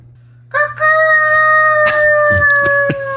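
A single long rooster crow rings out in the desert, a strained, harmonic call that rises sharply at the start, then holds and slowly sinks in pitch for over two seconds, over a low steady hum.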